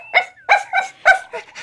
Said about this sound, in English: so did the crazy little puppy, yipping and yapping and barking and running rings around poor Lucky